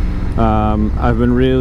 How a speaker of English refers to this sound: And as you can hear by the quality of this audio, as you can tell by the title of this episode, we are once again on the motorcycle.